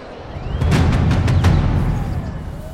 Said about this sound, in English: Oi, you! Bang the drum!